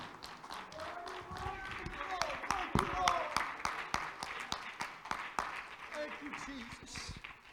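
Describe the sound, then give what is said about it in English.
An audience at a church service claps hands in praise of Jesus Christ in a sustained, uneven burst of applause, sharp claps landing throughout while voices call out and murmur underneath at a moderate level. “He deserves a hand clap of praise tonight.”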